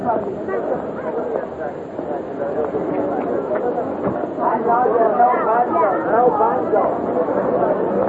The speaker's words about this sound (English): Is that a wild sound? It's just like a giant human beehive.